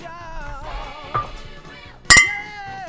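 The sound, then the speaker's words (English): Two beer bottles clink together in a single bright, ringing tap. The glassy tone hangs and fades over a steady bed of background music, with a fainter knock just before it. “My champagne glasses. No, they're two beer bottles.”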